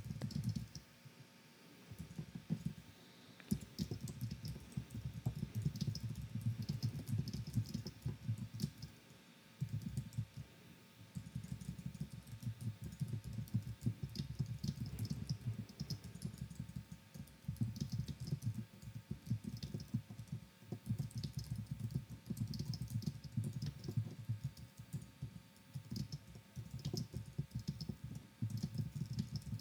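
Steady computer keyboard typing fills the whole recording, a continuous patter of key clicks with brief pauses, moderately loud and with no voices.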